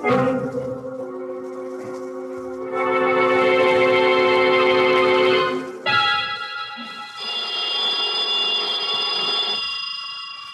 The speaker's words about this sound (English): About noontime, when the phone rang, I knew it was the clerk downstairs calling because I'd left a call for 12. I let the phone ring.